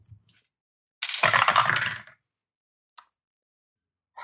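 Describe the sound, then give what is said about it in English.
Dice clatter and tumble across a hard tabletop in a quick burst lasting about a second, followed by a couple of faint, isolated clicks as they settle. “Roll away. Roll away.”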